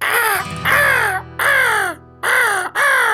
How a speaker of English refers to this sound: Marty opens his eyes to see four crows flying overhead.